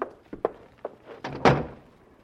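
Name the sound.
door being closed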